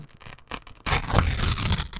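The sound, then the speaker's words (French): Thin rag paper (papier chiffon, from Grabeau) crinkles softly, then rips in one long, loud, hissy tear lasting about a second, with a bright, papery rasp and no voices. “Beaucoup plus facile à déchirer.”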